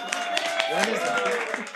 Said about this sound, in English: No claps for that. That's not... We shouldn't clap.